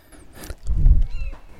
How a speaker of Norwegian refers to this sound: Veldig fint å ha den måken i bakgrunnen i det du begynte å snakke om havet. Det er faktisk ikke en måke, jeg har en lydmaskin.